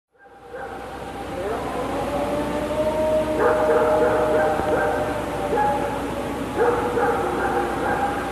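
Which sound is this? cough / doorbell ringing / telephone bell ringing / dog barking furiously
dog barking furiously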